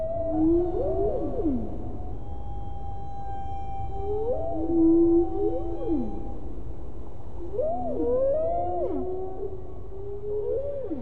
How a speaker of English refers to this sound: tries to bring the songs of various kinds of whales, including the humpback, bowhead, and killer whale, into the concert hall.